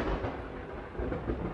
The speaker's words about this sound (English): Did you hear that? A little bit of rain, huh?